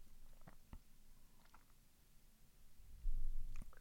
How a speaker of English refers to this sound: Got that gulp on there. Drinking some water.